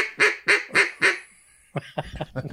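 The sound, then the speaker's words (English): A duck call blows four loud, evenly spaced quacks that ring out with a reverberant tail, followed by a run of quicker, quieter quacking chatter. No one speaks. “That sounds exactly like a duck.”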